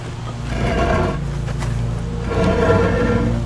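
A heavy cement cap is slid off a drinking water well in a front lawn, the well a cement cylinder about 12 feet deep; a loud, rough, low scraping grinds continuously for several seconds and swells near the end, with no talking.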